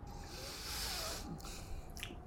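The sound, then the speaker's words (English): A soft, muffled squish of someone biting into the plain green, flavourless marshmallow of a Tunnock's sweet, a quiet breathy rustle lasting a couple of seconds with a few faint crackles toward the end and no talking. “Shall we? Yeah, let's have a bite.”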